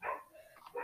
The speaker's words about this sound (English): Oh, my dog's barking. Sorry. FYI, my dog's barking. So. If you hear stuff in the background, is my dog barking.